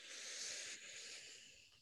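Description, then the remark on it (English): A long, steady deep breath drawn in through the nose, an airy hiss that carries for a couple of seconds and eases off slightly toward the end, fairly quiet with no talking. “But if we breathe in through our nose, let's do that again.”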